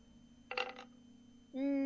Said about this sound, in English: I love rolling all of my two dice for this. Oh dear. It's actually three.